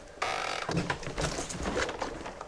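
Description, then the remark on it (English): A massive heavy door creaks slowly and steadily as it moves, a drawn-out groaning squeal that shifts in pitch over a couple of seconds, clear with no voices. “Why is the door moving?”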